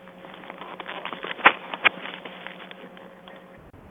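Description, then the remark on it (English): Two short, muffled coughs about half a second apart break a quiet, tinny phone line with a faint steady hum and soft rustling underneath. “I can hear you coughing.”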